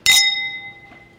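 A single bright clink of champagne glasses touching in a toast, followed by a clear ringing tone that slowly fades, with a faint second tap near the end. Fairly loud, with no voices.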